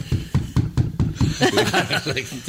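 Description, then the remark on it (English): Someone raps on a tabletop, a quick series of about six solid knocks, which sets a dog barking, before overlapping voices and other noisy sounds take over the rest of the moment. “starts barking because I knock on the table.”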